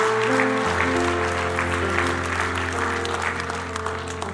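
A church audience applauds the people who will lead groups this semester, with steady, dense clapping that continues throughout, layered over sustained low keyboard chords that shift once early on.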